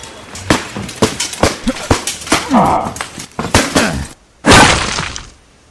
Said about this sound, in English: seems to have shattered my shield to splinters.